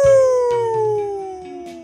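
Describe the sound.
A wolf howls once, a single long, loud wail that slides steadily downward in pitch and gradually fades over a couple of seconds.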